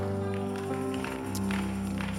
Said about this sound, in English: You are clapping like you are not sure what is going on.